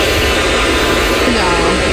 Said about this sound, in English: the place I'm staying at has a noise machine.